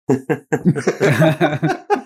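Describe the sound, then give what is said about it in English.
A sharp sneeze bursts out in the middle of a string of short, breathy laugh-like or coughing bursts, all loud. “Bless you.”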